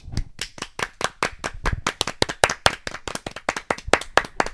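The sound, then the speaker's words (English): A round of applause welcoming a performer introduced as Dracula, made of sharp, crisp hand claps in a steady, even rhythm of about five per second, fairly loud throughout, with no voices. “Give round it up. Of applause.”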